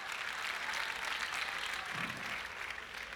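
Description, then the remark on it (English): A crowd applauds steadily, a dense wash of many hands clapping at once, fairly loud and sustained throughout with no pauses. “No, you don't clap for that.”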